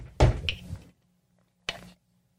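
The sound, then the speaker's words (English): Two knocks on a front door, a heavy, resonant thump followed about a second and a half later by a shorter, lighter one, with no voices. “On your front door.”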